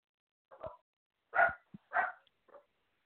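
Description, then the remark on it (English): A dog barks several times in short, separate bursts with brief pauses between, fairly loud, ending with a softer yip; no one speaks. The barking is set off by somebody walking by the door. “somebody must have walked by the door. That's why they're barking.”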